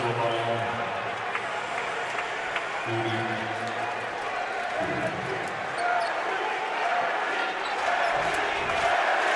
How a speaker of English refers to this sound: Crowd chanting Reggie. Ironically enough, a chant that started against the LA Dodgers by the New York Yankee fans in 1978, maybe 77.